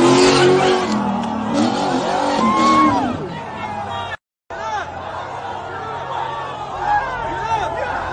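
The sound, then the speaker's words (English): A car crash in a played video clip plays out with loud engine roar and squealing, skidding tires, broken by a brief silent cut partway through before the traffic noise resumes. Indistinct voices chatter underneath. “But no, you meant the car, right? How's the car? Car's fucked. I imagine a whole new back end.”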